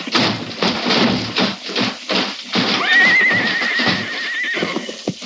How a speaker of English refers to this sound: Rein in your horses. The horses are out of control.